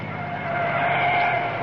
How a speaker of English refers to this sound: Oh, there's a car coming. I see headlights. Let's stand at the wayside of the road. After staying alive this long, I don't want to be hit by a car.